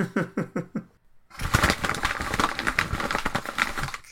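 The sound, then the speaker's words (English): Crinkly rustling of a plastic packet, scrunched continuously for a few seconds to imitate the sound of tumbleweed, preceded by several short rhythmic vocal sounds. “No, that just sounds like you rustling a packet or something.”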